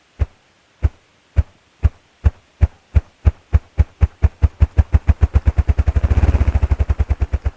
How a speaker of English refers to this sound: Listen for a moment to this remarkable drumming of a ruffed grouse.